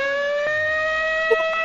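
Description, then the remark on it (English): A police siren wails in a loud, sustained tone that holds nearly steady and creeps slightly upward in pitch, with a brief soft knock near the end and no voices. “Oh no! Wait, dude, it is the cops!”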